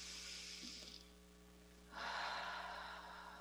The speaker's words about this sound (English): So let's take a moment to just breathe and tune in to wherever you are and whatever you're doing, becoming as present as possible to this very moment. Taking a breath with me, breathing in and out.